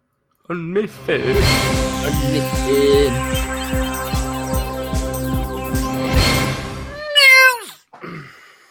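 A short cat meow opens, followed by several seconds of a steady, rhythmic tonal sound. Near the end comes a loud, falling meow and then a fainter one.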